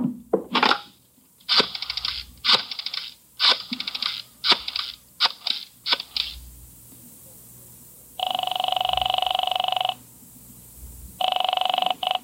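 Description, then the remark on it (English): A telephone being dialed to call City Hall: several quick bursts of clicking over about six seconds, then a steady ringing tone sounds twice with a pause between, clear, with no voices. “Use your phone a minute, Mac.”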